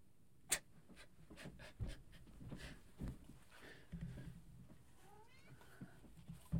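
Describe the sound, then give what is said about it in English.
A cat scratches at a door in a series of irregular, scraping bursts with short pauses between them, fairly quiet, with no one talking. “I just tossed a blanket at my cat. She won't stop scratching the door.”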